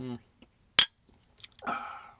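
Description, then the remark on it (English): A single bright clink of drink glasses touching in a toast, sharp, with brief voices just before and a burst of talk right after. “Cheers. Cheers.”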